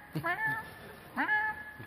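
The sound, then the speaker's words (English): A person voices two drawn-out, cat-like meows in a row, each rising and then trailing off, imitating the family cat, Gygax, in a foyer, against a faint background hiss. “You notice that as you're squatting near the hamburger, that the family cat has also taken to this bounty that is arranged in the middle of the foyer.”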